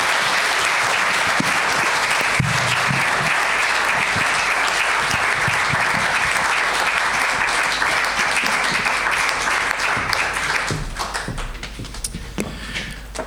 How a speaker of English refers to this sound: So can we just give a massive round of applause? Thank you.